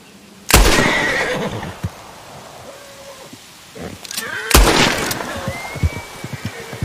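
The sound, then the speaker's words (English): A horse being shot lets out two loud, shrill whinnies a few seconds apart, each breaking into a shaky, trailing neigh, with quieter rustling and thumping in between. “Shooting, putting down his horse, too. Freeze, horsey.”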